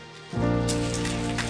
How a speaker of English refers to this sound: Now take God out of it. And with those four fingers, I want you to hide your thumb. Now I want you to clap. No thumb. Just clap with your four fingers.